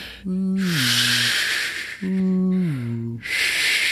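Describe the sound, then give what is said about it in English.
A voice imitates ocean waves, alternating two low, falling hums with long breathy shushing hisses that swell and recede like surf rolling in and out. “Let me provide the soothing ocean sound so you can fall asleep.”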